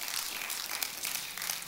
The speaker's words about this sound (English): Can I hear an amen? Come on, somebody's clapping, right?